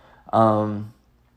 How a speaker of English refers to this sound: my cat, 60 hours of my cat in the background, crying as usual.